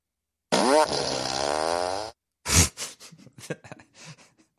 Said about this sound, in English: Somebody sent me a fart machine. Well, it doesn't. Doesn't work all the time. Was it free? Oh, there it goes.